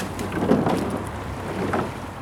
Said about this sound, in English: and then you've got a boat with an outboard motor on that follows them to see what they're doing or instructing them.